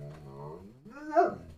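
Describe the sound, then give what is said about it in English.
A dog named Huck grumbles back at its owner, a low drawn-out groan that bends upward into a higher, whiny yowl before trailing off, all in under two seconds with no other sounds. “Did you hear that? Did you just backtalk me?”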